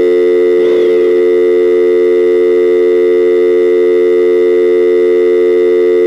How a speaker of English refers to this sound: A big dial tone I got.